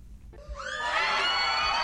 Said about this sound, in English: I don't know how long I walked until I heard the screaming.